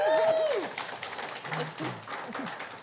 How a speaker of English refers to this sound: You can applaud, yes.